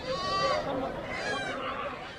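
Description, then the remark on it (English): Goats and sheep bleat in wavering, overlapping cries amid a busy livestock market din in a shady patch by an oasis, with a constant murmur of crowd noise underneath. “Yes, there are sheep and goats, horses and asses, and chickens and pigeons and rabbits.”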